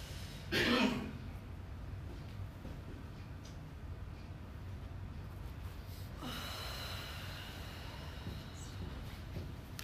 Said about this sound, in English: Doing this is called paced breathing, and if you can do this for 3-4 minutes a day, it can reduce your stress level all the time. So this is a free thing you can do, just practicing it a few minutes a day. Practice it when you're not stressed.